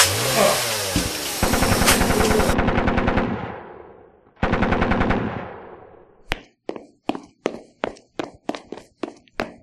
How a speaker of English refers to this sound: As I was saying, the unmistakable sounds of chainsaws whacking trees with sticks and undeleted expletives. Not exactly music to most people's ears, and certainly not to mine.